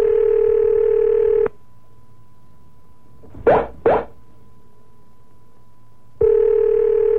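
A steady telephone line tone drones while calling a man in San Francisco, cuts out into near silence broken by two short clicks or plops, then the same flat tone returns. No one speaks.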